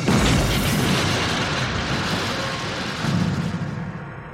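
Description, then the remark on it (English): A loud, deep explosion blast in front of the Cleveland Museum of Art in Cleveland at 12:45 a.m. on March 24, 1970, blowing a statue off its pedestal, with a heavy low rumble that sustains and rolls on, swelling again briefly before slowly fading, with no voices present. “March 24th, 1970, 12:45 a.m., a violent explosion goes off in front of the Cleveland Museum of Art.”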